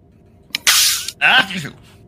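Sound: sneeze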